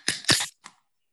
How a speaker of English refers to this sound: So shall we open our cans and see what's going on? Let's do it. All right. 3, 2, 1.